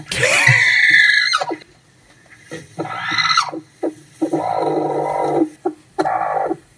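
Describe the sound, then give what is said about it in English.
A chicken squawks loudly in a series of harsh, screechy calls: one long strident cry, then several shorter, rising squawks with brief pauses between them. “That's a real chicken.”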